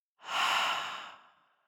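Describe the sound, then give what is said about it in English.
A single long, breathy exhale after a held deep breath, fairly soft, swelling quickly and then tapering away over about a second and a half, with no talking. “And let's take a deep breath in, holding that one thing at the top. And now breathing out.”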